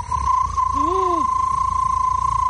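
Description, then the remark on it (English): A person's voice mimics a pond frog with one short croak that rises and falls in pitch, lasting about half a second, over a steady high-pitched tone and low background rumble. “This is a frog. A frog in the spring, like in the pond.”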